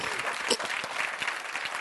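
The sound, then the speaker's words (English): An audience claps their hands in a dense, steady burst of applause during a sermon, many overlapping claps with no distinct rhythm. “Somebody get glad about that and clap your hands, would you?”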